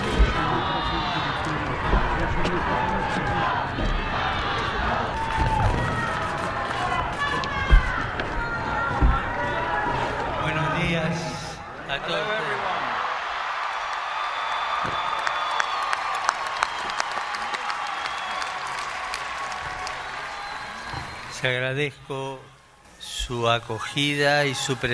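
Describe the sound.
A crowd estimated in the tens of thousands cheers and applauds loudly outside the U.S. Capitol as Pope Francis appears on the Capitol balcony, in a dense, sustained roar. Midway it thins to a softer murmur with scattered claps, and voices can be heard talking.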